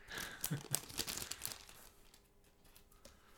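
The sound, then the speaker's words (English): Busy crinkling and tearing of Swiss wrapping paper printed with a cross and a cow as a tiny gift, a Victorinox Swiss Army pin, is unwrapped: a quick flurry of rustles for about a second and a half, then fading to quiet handling with an occasional soft crackle. “That's Swiss wrapping paper.”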